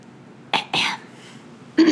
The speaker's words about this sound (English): I had to clear my throat just to listen.